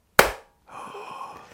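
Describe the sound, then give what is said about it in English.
A single sharp hand clap, bright and percussive with a quick decay, followed after a brief silence by a faint, steady background hum. “I was actually, I was a little bit disappointed in the quality of the clap.”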